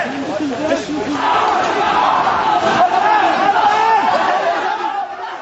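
A dense clamor of many overlapping voices: students laid on the ground in a group, piled on one another, moan and groan in pain while police and plainclothes forces shout loudly and harshly, sustained and chaotic without a break for about five seconds.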